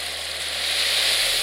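A sound machine running in a child's room and in the hall while she naps pours out a steady, ocean-like white-noise hiss, bright and even, swelling slightly in volume, with a faint low hum beneath and no voices.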